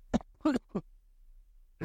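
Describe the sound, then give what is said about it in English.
A short fit of coughing: three quick coughs in a row, then a brief pause before a fourth cough begins. “I went 17 minutes without coughing.”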